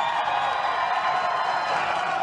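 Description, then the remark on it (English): An audience claps steadily, a dense, even wash of many hands with a hint of crowd noise, holding at a constant moderate level throughout. “Yes, you can clap.”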